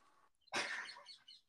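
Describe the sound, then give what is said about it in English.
A magpie lets out a harsh, raspy squeak lasting under a second, preceded by a couple of faint, thin chirps, with no talking. “That is actually a magpie.”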